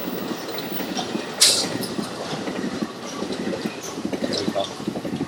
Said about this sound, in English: Listen to how loud the train is. The Santa Bell Express.